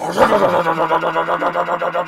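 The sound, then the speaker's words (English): A voice imitates a rough car engine starting as the key is turned: a fairly loud, gravelly vocal drone that sputters in quick, even pulses for about two seconds. “You're going to turn your key, and your car was smooth before. You turn your key, all of a sudden your car...”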